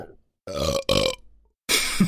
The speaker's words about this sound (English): Yeah, that just came out. Episode 8, the burper. The belcher.